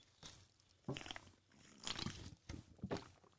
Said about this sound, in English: I'm just going to take a sip of coffee here because I need to.